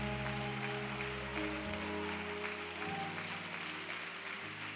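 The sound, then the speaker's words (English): An audience claps their hands for the Lord at night in a dense, continuous wash of applause, while sustained low keyboard or organ chords hold and shift underneath throughout. “Clap your hands if you love the Lord tonight.”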